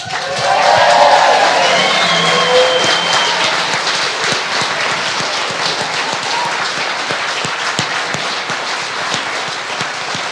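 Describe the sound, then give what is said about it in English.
An audience at a stage show claps loudly and steadily for about ten seconds, dense and sustained, with whoops and cheering voices rising in the first couple of seconds before settling into continuous applause. “So I'm going to walk back on stage and you're going to clap, stand up, clap, get some energy into your body, and then we're going to go all in.”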